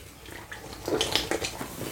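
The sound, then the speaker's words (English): Loud, wet gulping of a Monster Energy drink, several quick swallows and slurps in an uneven rhythm over a faint hiss, with no one speaking. “I did that a bit loud. Yeah, man, drink quietly, man.”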